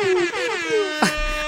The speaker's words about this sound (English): You could put the air horn behind this one.